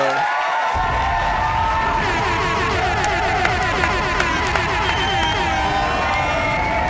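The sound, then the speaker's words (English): A crowd cheers loudly and steadily as a round of applause for Dave Chappelle, with high whoops and shouts layered over a dense roar and scattered claps. The sound starts abruptly and holds at full volume throughout. “Round of applause for my nigga Dave.”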